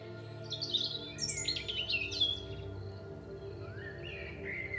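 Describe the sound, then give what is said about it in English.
Bright birdsong fills the air, with several birds chirping and trilling in quick, overlapping phrases over a soft steady background hum. No one speaks. “Birdsong emanates all around, and the scent of flowers lifts your spirit.”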